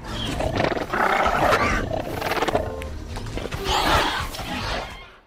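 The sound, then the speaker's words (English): Soft, chattering raptor dinosaur calls made mostly from manipulated Gentoo penguin sounds: a series of rasping trills and low growly chirps that rise and fall in bursts, with no talking. “They do this sort of chuttering and these softer, cuter sounds that we were able to manipulate and make the raptors more friendly.”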